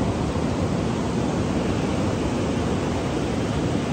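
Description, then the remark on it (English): A steady, rushing roar of ocean surf as the sun is about to set, even and continuous throughout with no distinct individual crashes, like waves washing ashore. No one speaks. “Near the ocean in the background.”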